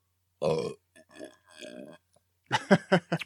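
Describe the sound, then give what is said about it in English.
A loud, raspy burp bursts out after a sip of beer, followed by two shorter, lower gurgling belches, then a quick run of voiced sounds, like laughter or talk. “Let me take a sip before I go ahead and make it nice it. And loud.”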